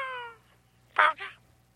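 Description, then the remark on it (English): A caller to the Todd Glass Show imitates a cat, giving two short meow-like cries in quick succession, the first louder and longer, heard clearly after a trailing bit of voice. “Who is this, the cat?”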